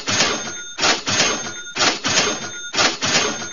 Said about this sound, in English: I want the sound guy, our engineer, Bill, back there. I want him to hit me with 4 cash registers right now. Bam!